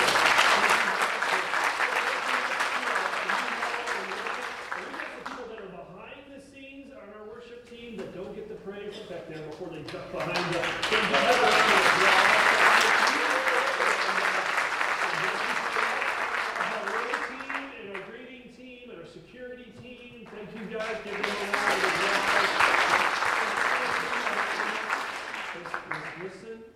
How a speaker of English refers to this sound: Was that worship experience great? Give that worship team a round of applause.